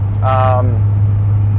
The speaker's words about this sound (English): Now, two things I want to point out here is, number one, the truck is loud, okay? 5-inch exhaust, it's aggressive.